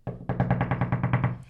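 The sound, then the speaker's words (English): A rapid run of about a dozen evenly spaced knocks, each a sharp thud, fired off in quick succession for just over a second at a steady, fairly loud level with no talking. “I don't even know how many knocks that was.”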